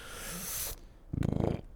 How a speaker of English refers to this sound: Whoa. Woof. That burp was Jameson. Was oak-aged, wasn't it? Yeah. It was.